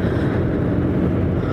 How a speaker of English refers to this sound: when I'm in the truck, I might as well be doing something useful.